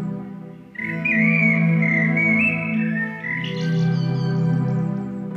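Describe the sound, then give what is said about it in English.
Bird-like whistling and chirping glide over a steady, droning low hum, with the calls rising in pitch partway through. No one speaks. “Look who the birds have brought us this week.”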